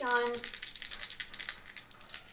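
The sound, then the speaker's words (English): A short vocal sound opens, then dice (a d6 plus 2d6) rolled for damage in a tabletop role-playing game clatter and rattle in a rapid, uneven burst of bright clicks that keeps going for about two seconds before trailing off. “Okay, roll for damage.”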